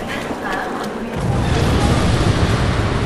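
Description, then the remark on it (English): An explosion: a sudden, deep, booming rumble breaks in about a second in and keeps rolling loudly to the end, heavy, drowning out the quieter background noise before it. “C'est quoi? Une explosion?”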